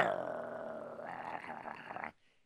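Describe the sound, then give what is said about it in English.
A throaty gargling sound in a person's throat, wet and rattling, runs steadily for about two seconds before cutting off abruptly into near silence. “You're gargling in your throat.”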